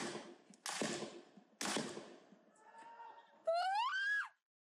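Two sharp, loud bangs ring out, followed by a young woman's piercing, distressed scream that rises in pitch and breaks off abruptly, close and loud, after a moment of murmured background sound.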